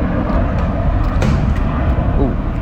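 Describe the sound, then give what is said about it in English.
A police helicopter passes overhead on a 95-degree summer day in LA. Its loud, steady rotor rumble fills the air with a dense low-pitched drone, and faint voices sit beneath the noise. “Oh, police copter.”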